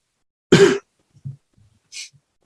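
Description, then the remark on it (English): A man puts his hand to his mouth and coughs a little: a single short cough bursts out near the start, followed by a few faint throat sounds and a brief soft hiss of breath, with no talking. “He puts his hand to his mouth and then coughs a little.”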